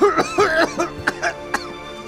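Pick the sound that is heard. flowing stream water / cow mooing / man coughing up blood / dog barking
man coughing up blood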